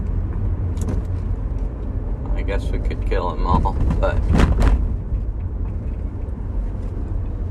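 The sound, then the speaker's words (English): A bus roars past at dangerously high speed, its deep engine rumble swelling loud for a couple of seconds before easing back into steady traffic noise, while a person talks over it. “Jesus Christ, that bus. They're gonna freaking kill people if they keep driving like that.”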